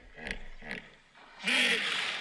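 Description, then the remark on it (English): A hippopotamus vocalizes: two short, breathy grunts followed by a louder, rasping honk-like bellow that swells and holds briefly, with no talking. “It's a hippo!”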